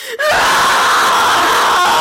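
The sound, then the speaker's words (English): A single loud, drawn-out yell from one voice, rising sharply at the start and held strained for about two seconds, performed as a dramatic battle cry as train doors are ripped open. “And with a mighty yell...”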